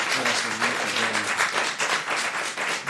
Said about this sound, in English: Our priority has to be the crew of the Scumdog Bullionaire, for they've stolen 10 points. Ooh. 10 points, give them a round of applause.